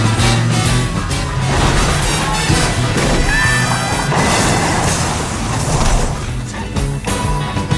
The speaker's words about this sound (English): Here is some of that cop chase.